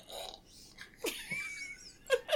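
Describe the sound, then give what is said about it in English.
The cap pops off a bottle of Moose Drool brown ale from Big Sky Brewing Company in Montana with a sharp click, followed by a brief hiss of escaping gas and a couple of quick clinks. “Pop this top.”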